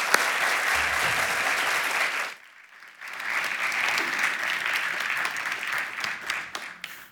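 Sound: audience applause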